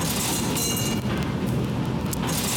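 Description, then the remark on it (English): A subway train rumbles past in a subway station in a continuous, heavy roar, with deep low-end noise and faint metallic squealing at first. It stays loud throughout, with no voices. “Let's go down into the subway station where you hear the strangest things.”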